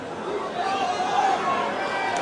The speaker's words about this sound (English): The crowd getting a little rowdy at tennis. Australian Open heckler yells, get vaccinated, as Novak Djokovic prepares to serve, and he's preparing to serve for a match point.